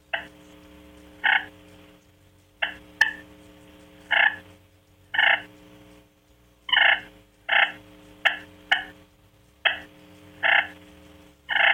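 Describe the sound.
Soft, content turkey clucks and purrs made on a slate call, imitating what turkeys do when feeding: about a dozen short, raspy bursts at uneven intervals, fairly quiet, with no talking.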